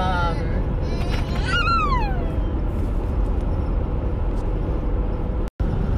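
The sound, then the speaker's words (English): Steady low road rumble from inside a car driving on a sunny day under a clear blue sky fills the whole stretch, with a brief high, falling squeal early on and a momentary cut-out near the end. “Okay, so I've had some snafus and not really bad, just traffic and babies and stuff like that, and I'm just driving, so that kind of stuff happens.”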